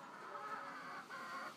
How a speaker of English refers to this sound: There are four chickens. Ah, she's seen her mummy. She's going nuts. Can you hear her going nuts?